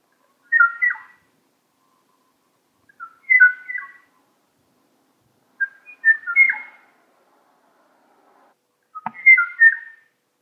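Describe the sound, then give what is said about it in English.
A male Kauai o'o bird, the last of its kind, recorded in 1984 by James Jacoby, calls for a female: four separate bursts of clear, flute-like whistled notes spaced a couple of seconds apart, each a short fluty phrase, with silence between and no answer. “In 1984, James Jacoby recorded this kawaii o-o bird. It's a male calling for a female, but he never gets a response.”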